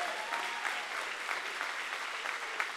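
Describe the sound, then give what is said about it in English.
A crowd applauds the dream team steadily, many hands clapping in a dense, continuous patter at an even loudness throughout, with no voices standing out. “Come on, let's clap our hands for the dream team, everybody.”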